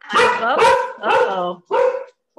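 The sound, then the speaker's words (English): Two pet dogs bark, reacting to hearing a voice, in a rapid series of loud, tonal yelps, four or five bursts with short gaps between them and no talking. “My sister's dog is here, and she thinks when she hears another voice, someone else is here, and then my dog starts barking.”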